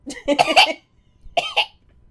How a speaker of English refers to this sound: At least I don't taste blood anymore when I cough. Yeah, thank God.